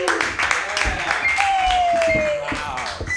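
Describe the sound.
A comedy show crowd applauds wildly to welcome the next comedian, steady dense clapping mixed with cheers and voices, while a long high whistle slides downward through the middle of the noise.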